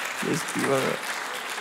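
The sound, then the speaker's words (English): An audience applauds a speaker's University of Auckland degree in a steady, dense patter of clapping throughout, while a voice briefly calls out over it in two short bursts. “You can applaud my degree.”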